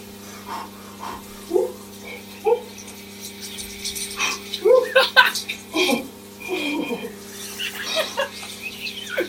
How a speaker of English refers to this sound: I'm about to get in my deliciously cold shower, and this is what it sounds like.